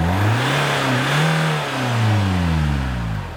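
A car's internal combustion engine revs up and down in two surging waves, its pitch rising and falling, loud with a steady mechanical roar underneath and no one speaking.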